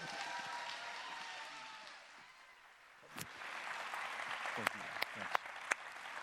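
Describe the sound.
An audience at Garfield Memorial Church in Cleveland applauds and cheers loudly for a guest speaker, a dense wash of clapping that dips briefly, then swells again with sharp individual claps popping out and voices shouting over the noise.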